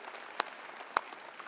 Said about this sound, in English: Let's give them a good loud round of applause.